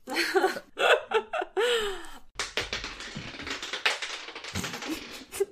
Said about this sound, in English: There goes the cat Liana. With the dice again. What'd she roll? What'd you roll, Liana? She rolled a 3.